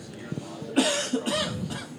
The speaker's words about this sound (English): I decided to cough just as I was getting ready to make my point.